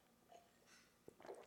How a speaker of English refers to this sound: I don't have the time or patience to go in there and edit it out of the video or the audio, so you guys just get to hear me sip my wonderful IPA. This is the IPA from Fort Walton Beach.